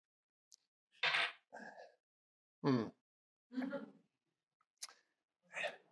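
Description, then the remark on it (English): A fountain pen being refilled from an ink bottle about 15 years old: a handful of separate clinks, taps and short scraping rasps of glass and metal, spaced out with brief quiet gaps between them. “Let me just top this up.”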